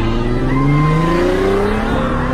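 A car engine roars and accelerates away as the Joker and his goons drive off, its pitch climbing steadily as it pulls off. Loud, with a faint tire squeal and no voices.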